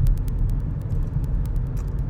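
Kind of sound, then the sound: vehicle, car interior rumble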